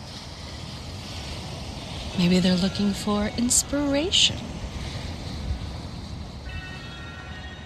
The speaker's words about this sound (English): The waves hold a lot of inspiration. The power that they have as they keep rolling and rolling endlessly into the shore.